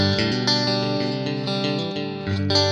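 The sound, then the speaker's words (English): An electric guitar plays through an amp set to stock with the boost off, bass at 3 o'clock and treble at noon, with a clean-to-mildly driven tone, strumming sustained chords that ring out steadily, fairly loud, with no voices. “And I take off all the mods, so I can put it in stock, turn the boost off. And if you use a Strat sound, it's gonna be super.”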